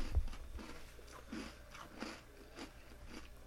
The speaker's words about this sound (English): I'm like, let me dunk my cookie. Like, I think I need to, like, have a sip and then take a bite of the cookie, you know? I'm dunking my cookie as we speak.